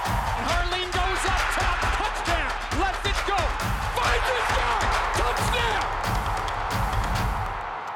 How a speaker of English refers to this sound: What a play by Ty Bettner. He likes to put on a show. Knocked away at the last minute. Listen to the crowd.